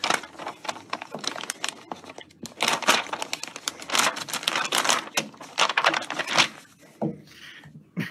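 Paper is ripped and crinkled as pages are torn out of a book by someone with Cheeto-covered fingers, a dense run of sharp, crackling rips and rustles that keeps going steadily for several seconds with no one talking.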